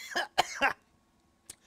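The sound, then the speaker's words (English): Three rough, harsh coughs in quick succession, fairly loud, followed by silence and one short, faint hacking sound near the end. “That was really a bad cough right there.”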